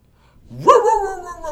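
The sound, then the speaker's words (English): A person imitates a dog's bark with a single drawn-out, throaty "arr" that rises quickly and trails off over about a second, fairly loud with no other sounds around it. “That's the bark. I was thinking maybe like, "Arr!" Like a cute dog.”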